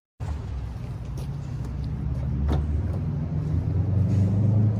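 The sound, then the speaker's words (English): Steady low rumble of a car interior while driving in the Skyhawk neighborhood, with continuous engine and road noise filling the background and occasional faint clicks or bumps; no one speaks. “Okay, so we are in the car now.”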